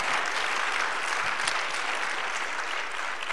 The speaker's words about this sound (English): Come on, give the Lord a hand clap of thanksgiving today. Amen.